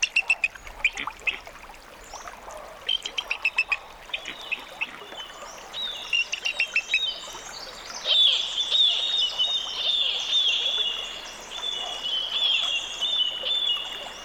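A fledgling bald eagle learning to fish for salmon near Glacier Bay, Alaska, calls in bursts of thin, high-pitched chittering notes, then gives longer, repeated piping cries. Faint trickling water runs underneath, and no one speaks.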